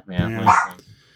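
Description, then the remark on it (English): A dog named Penny lets out a single loud bark, with a brief harmonic yelp that quickly fades into quiet. “Hello, Penny. Dog.”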